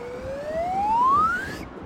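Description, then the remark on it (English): A single whistle blast sounds as the signal to charge. Its tone slides steadily upward in pitch for about a second and a half before cutting off, over a low rumbling background. “Ready, boys? On my whistle.”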